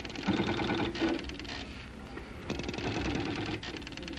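A busy mechanical chattering of a computer calculating the arrival time of asteroid 738 after being asked, dense rapid clicking and whirring with a low hum underneath, steady and fairly loud for about four seconds with no voices.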